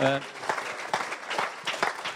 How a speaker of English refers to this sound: I think she ought to have a round of applause because that was brilliant.